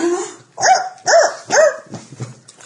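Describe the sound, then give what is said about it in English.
A person imitates a chihuahua barking: three sharp, high-pitched yaps in quick succession, loud, then a few softer, trailing yips. “No, that's bark like a chihuahua.”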